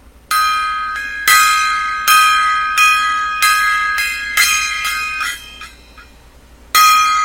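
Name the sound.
gong being struck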